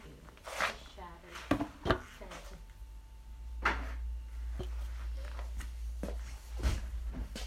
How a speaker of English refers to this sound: But you should still be able to break it. Right. Maybe, like, between two pans? Just, like, smack them.